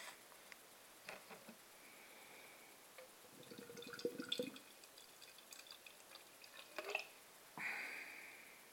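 Beer of 6.5% strength is poured from a 440 ml can into a World Beer Festival staff glass, with soft gurgling and splashing, scattered drips and fizzy crackles, plus a brief bright clink near the end. No one speaks.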